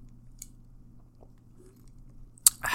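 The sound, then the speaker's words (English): Someone takes a quick sip of a drink: a couple of soft clicks over low background hum, then a short, sharp slurp at the end. No one speaks. “had to get a quick little sip in.”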